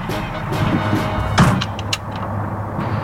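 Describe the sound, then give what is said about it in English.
A steady low engine rumble and road drone from inside a moving fire truck, broken by a couple of brief rattles and clunks, with no one talking. “I am riding in the fire truck.”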